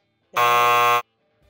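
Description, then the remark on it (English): A single loud, harsh game show buzzer blares for well under a second, a flat rasping tone rich in overtones, then cuts off sharply into near silence. “All right, so that's your first buzzer.”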